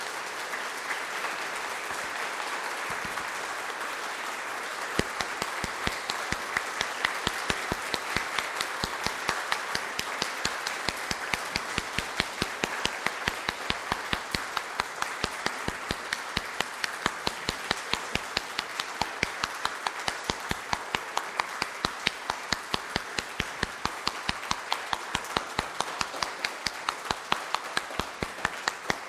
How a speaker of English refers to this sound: Let us send Justin forth with our applause.